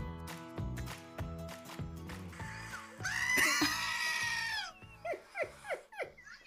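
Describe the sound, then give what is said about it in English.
Goats bleat in harsh, scream-like cries: one long, loud, wavering call followed by three or four shorter bleats that slide downward, over a steady rhythmic musical background. “It sounds like people! It's weird.”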